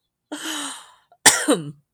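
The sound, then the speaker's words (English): Two moderately loud coughs with no talking, the first a drawn-out hacking cough and the second a sharper, raspier one after a brief pause. “Makes me cough in sympathy.”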